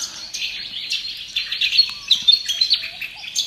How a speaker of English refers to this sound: I'm thinking it's probably like fairly dry country. There's peaceful dove, there's bar-shouldered dove, willy wagtail.